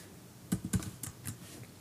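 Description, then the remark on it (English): Several quick keystrokes on a computer keyboard clack in an irregular burst, fairly quiet, with no voices over them, as someone types to look up items online. “You can probably hear me tippity-tip-tip typing away.”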